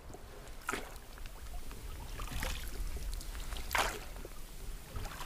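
Oars from a rowboat dip and pull through river water in a steady rhythm, three splashy strokes about a second and a half apart, over a constant low wash of moving river.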